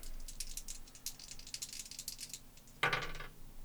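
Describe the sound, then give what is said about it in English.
Dice are rolled, rattling in a rapid string of sharp, bright clicks for a couple of seconds, then tumbling out in a brief, louder clatter before settling on a 5. No one speaks. “Wow, these dice are not doing me well.”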